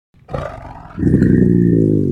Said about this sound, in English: But let's have a listen quickly to some of the tiger inhales that I found, and then some of those lynx growls that I found, to see if we can kind of try and find something that might work together.